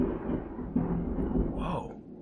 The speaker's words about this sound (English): thunder cracked as if I was a god for a moment. Like, this was my god moment is about to shine.